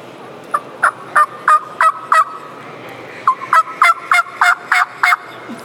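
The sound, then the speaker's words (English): Two evenly paced runs of turkey yelps, about six or seven notes each, separated by a short pause. The calls are clear and fairly loud over a quiet background, with no talking. “Three or four yelps. Let it chill out.”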